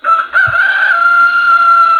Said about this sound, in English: So anyway, let's go ahead and get to the crappy sounding rooster. That starts off ….